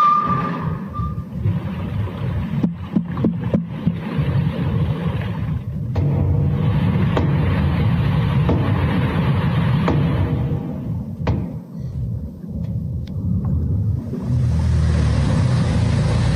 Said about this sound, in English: They said they found an area where they thought they heard some knocking, some ping. Somebody said it was at every 30 minutes, at 30-minute intervals that they heard this knocking. Here's what the knocking sounded like. Listen.